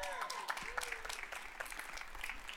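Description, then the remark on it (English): A crowd bursts into steady applause for over a dozen new mothers and babies, dense overlapping claps with a few faint cheers or whistles rising above the clapping. “We could clap for that.”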